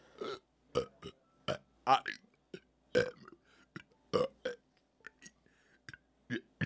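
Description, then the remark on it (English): Someone talks while burping, each word forced out as a croaky, belched burst in a choppy series of about a dozen loud pulses with short gaps between. “You cannot be the president and burp talk.”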